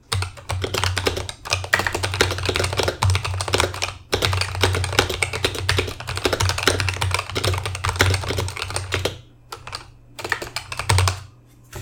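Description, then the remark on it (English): Rapid, steady typing on a Razer Huntsman Elite mechanical gaming keyboard with LED lights, dense clacking keystrokes, with brief pauses partway through and near the end, over a faint low hum. No one speaks. “So here's a sampling of what it sounds like.”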